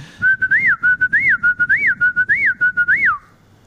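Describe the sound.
A person whistles an imitation of a whippoorwill's call: a steady high tone broken by five quick rising-and-falling swoops in a regular rhythm, clear and fairly loud with no talking.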